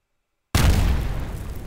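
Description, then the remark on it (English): A sudden explosion sound effect bursts in after half a second of silence, loud and booming with deep low rumble, then a rough, crackling decay that carries on through the end. “Or like an explosion.”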